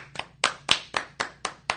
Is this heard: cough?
no